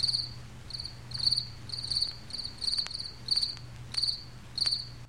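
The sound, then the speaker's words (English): Crickets chirp in steady, repeating high-pitched pulses, a bright trilling pattern that comes in short bursts over a low, constant hum, with a few faint clicks scattered through. “Some of them are still around and some of them are still chirping, and thank God for that.”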